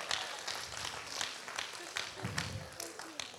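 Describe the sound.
A crowd claps steadily for a few seconds as a hand clap of praise to the Lord, dense overlapping hand claps forming a continuous patter of applause, with faint voices murmuring underneath.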